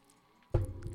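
A brief hush, then a single sip of blueberry muffin coffee, a wet slurping draw that starts abruptly halfway through and lingers with a soft, low gulp.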